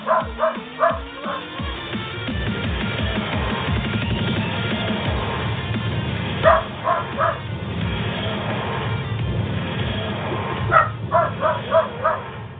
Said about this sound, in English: Welcome to the Cultdom Collective Podcast. With dog accompaniment.